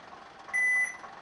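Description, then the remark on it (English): A bus hums steadily as it pulls up and stops, and a single clear electronic beep rings out for about a third of a second as its door opens. “The bus stops and the door opens.”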